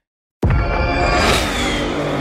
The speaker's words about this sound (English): Did you hear that? That's what an estimated 500 horsepower sounds like.